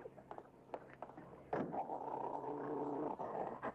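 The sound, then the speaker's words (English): A pit bull and a big police dog break into harsh, sustained growling and snarling at each other beside a taxi, loud, rising suddenly after a quieter start and continuing without pause for a couple of seconds. “Oh, I guess the big police dog over there don't like your dog.”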